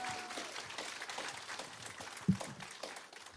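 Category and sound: crowd, audience applause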